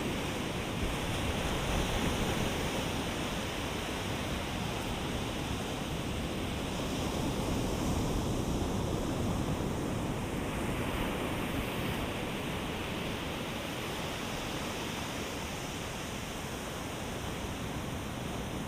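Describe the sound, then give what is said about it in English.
Steady, continuous rush of ocean surf, a broad wash of noise that swells gently without pause, even in loudness throughout, with no voices. “You can just allow yourself to completely let go and surrender to the sound and the sensation of the waves.”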